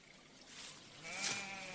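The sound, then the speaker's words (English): A single sheep bleats once, a short wavering cry rising out of soft outdoor background noise, fairly quiet, with no voices. “Sheep have always been the cornerstone of Icelandic farming.”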